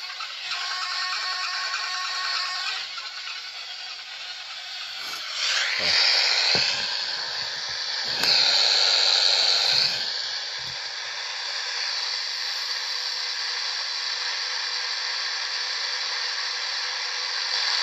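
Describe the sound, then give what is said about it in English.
Loud, continuous radio static hisses steadily across the whole stretch, with harsh bursts and brief tonal squeals mid-way as a scanning spirit box sweeps through channels, no clear voices. “Alright, I think we got some interference coming in. Time to change the channel.”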